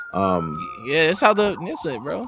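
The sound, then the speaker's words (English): A police siren imitated by a human voice, rising and falling wails sung loudly over a couple of seconds, with a faint steady tone underneath at the start. “And of course, we couldn't have an episode without the police sirens.”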